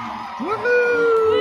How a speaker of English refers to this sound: Woohoo! We always get the cheering at the end. I like it.